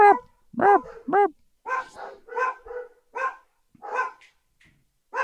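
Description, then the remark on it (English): Dogs bark repeatedly in a quick, irregular series of sharp yaps and barks, fairly loud, with a few whiny, higher-pitched yelps mixed in and no talking. “No, I've lost it now because your dogs have...”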